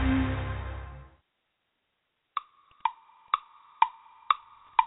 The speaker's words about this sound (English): Oh, draft day comes, but once a year, each tick of the clock, the time draws near, where there'll be hope for every team in the National Football League.